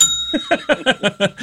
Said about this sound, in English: Hit that bell.